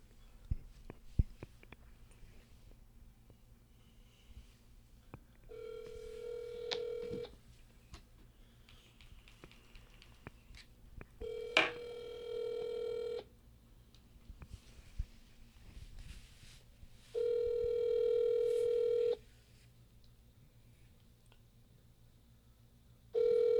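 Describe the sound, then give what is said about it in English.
An outgoing phone call rings back in steady, evenly spaced tones, three long ring pulses separated by pauses, with a faint background hum and occasional soft clicks between them. “I'm about to call him.”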